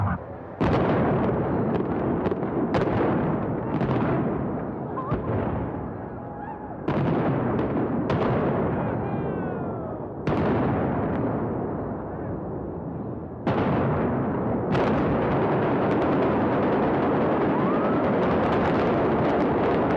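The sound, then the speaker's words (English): Simulated cannon broadside from the ship HMS Britannia at Treasure Island, timed with demolition explosions along the Dunes property: a rapid series of deep, booming cannon-like shots and explosions overlapping in quick succession, each sharp onset followed by a long rumbling decay, loud and continuous with no speech. “Cannon shots from the ship were simulated to coincide with explosions along the Dunes property.”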